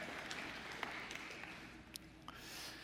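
A few scattered, hesitant claps from an audience ring out over a steady background hiss. The claps are sharp but faint and irregularly spaced, never building into real applause. Nobody speaks.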